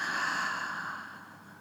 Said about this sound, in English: So wherever you are, just finding a comfortable seated position. Taking a nice deep breath in through your nostrils. And opening your mouth, let it out.